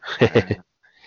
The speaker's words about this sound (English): All right, we can move on as I'm yawning into the microphone.